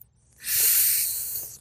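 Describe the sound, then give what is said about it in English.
A single long, deep breath drawn in as deep-breathing practice, a steady airy rush lasting about a second that swells quickly and then gradually eases off, with no talking. “We're gonna practice deep breathing.”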